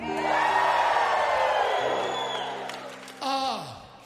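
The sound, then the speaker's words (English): A crowd at a show in Branson cheers and whoops loudly and steadily for about four seconds, with a sustained tone beneath it and a sharp falling whoop rising above the noise near the end. “Now all of Branson is cheering.”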